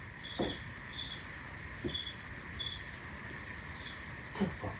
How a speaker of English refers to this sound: The snake. I hope it's a cricket.